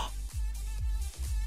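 An animal snorts and breathes heavily in three rough, low bursts spaced roughly half a second apart, each one loud and breathy against a steady low rumble, with no voices.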